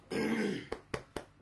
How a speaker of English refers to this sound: So that act, excuse me again, I'm going to clear my throat again.